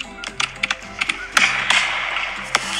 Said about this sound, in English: There we go. Celebratory fireworks for that one.